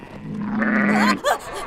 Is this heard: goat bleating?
yes